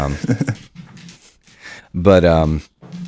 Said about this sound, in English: There's a puppy. Yep.